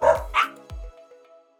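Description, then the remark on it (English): A puppy, being called to go practise field goals for the Puppy Bowl, lets out two quick, high-pitched barks, followed by a short sharp yip, then fading quiet. No one speaks. “Speaking of which, I gotta go teach them how to score field goals. Come on, Mochi. Let's go, Tebow!”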